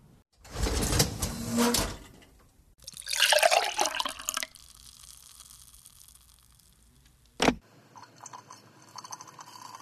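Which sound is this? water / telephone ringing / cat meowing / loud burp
water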